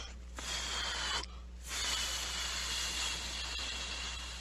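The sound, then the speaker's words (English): Someone blows breathy, hissing air in two or three long pushes with brief pauses, trying to whistle but producing no clear tone. No one speaks. “Try to whistle. I can't whistle.”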